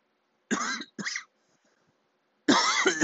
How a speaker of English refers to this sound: That was a stupid cough. I'm sorry about that. My mouth is dry.